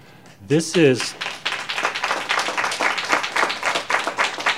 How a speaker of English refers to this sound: Madam Chair, I know we don't allow applause, but thank you for that. I have to thank you for that.